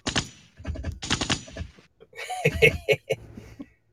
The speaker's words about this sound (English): I heard a gunshot. What's that? I did too. You hear that? I did too.